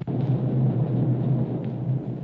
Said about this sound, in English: Just off starboard. You can see Galto Island coming in view. And those explosions are coming from Galto Island. I don't like the sound of it.